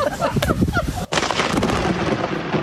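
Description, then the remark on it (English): People talk briefly at a wedding ceremony on a beach in Massachusetts, then, during a storm as the couple say their vows, a sudden, sharp crack of lightning bursts into a loud, sustained roar of thunder that rumbles on and drowns out everything else. “And literally as the couple were saying their vows, lightning struck.”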